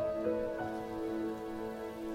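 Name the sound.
rain falling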